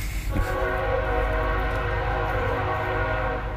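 A train horn blares in a long, steady chord over the heavy rumble of a passing train, loud for the whole stretch, with no voices.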